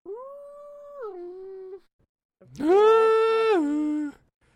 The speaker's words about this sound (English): I got a dog that's whining.